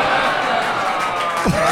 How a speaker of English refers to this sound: I assume most of the booing is for Thatcher, actually.